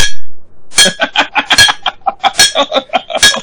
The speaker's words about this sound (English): This guy has no rhythm. Can he bang on a pipe with a rhythm?